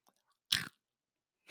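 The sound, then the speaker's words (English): A single loud crunch of someone biting into Saffron Road Crunchy Chickpeas Falafel snacks, followed by a pause and the start of another crunchy bite, with no talking. “Crunch them on mic today.”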